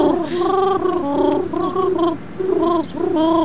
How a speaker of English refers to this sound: Now you've done it. You've got pigeons.